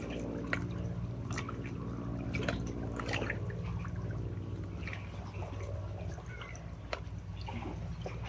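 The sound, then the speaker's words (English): Water flows steadily with scattered drips and splashes on top, a continuous wet trickle with no one speaking. “Allowing the sounds of the water to bathe our heart, bathe the brain in the head, bathe the gut brain.”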